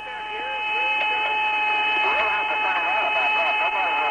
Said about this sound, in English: It's a whistling, you know, like an outer space type thing. Recently, unearthed recordings made by NASA of the journey show the astronauts reacting with surprise and confusion to an unearthly howling noise in their headsets.